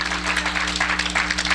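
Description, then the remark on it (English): A crowd claps hands together in praise of God in a dense, continuous burst of applause, fairly loud and steady throughout, with a low electrical hum underneath and no voices. “Then give God a hand clap of praise.”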